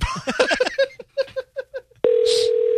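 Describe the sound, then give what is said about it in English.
A quick run of short phone dialing beeps as someone calls a childhood phone number with the 508 (Worcester) area code, then a steady ringing tone that starts abruptly and holds, fairly loud on the line; it rings only once. “It only rang once.”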